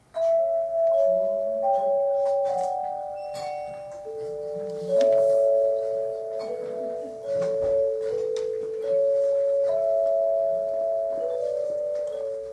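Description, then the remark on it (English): A set of chimes played by several people rings out a slow, steady Holy Spirit hymn melody, each clear bell-like tone sustaining and overlapping the next, with faint room noise underneath and no talking. “And then on chimes, some people are going to play this next little thing. Are you ready? Chimes.”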